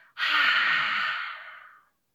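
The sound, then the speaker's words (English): A single forceful, breathy exhale during a dragon-breathing exercise, after a deep breath in through the nose is held, that starts abruptly, holds strong for about a second, then tapers away, like a person huffing out air to imitate a dragon's fiery breath. Fairly loud, with no talking. “And then breathe out and sound like a dragon breathing their fiery breath.”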